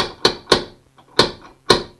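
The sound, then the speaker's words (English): Four sharp knocks on a door in two quick pairs, fairly loud, with a short pause between the pairs and nothing else heard. “Oh, we've got a knock at the door.”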